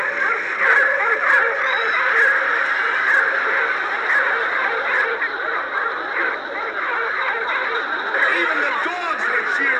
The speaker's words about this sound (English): There's the windup and the swing. It's going right to the spot where the babe pointed. Oh, and listen to that crowd roar.